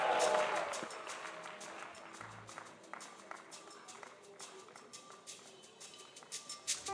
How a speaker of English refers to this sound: Give him a clap and shout and give him glory for those miracles.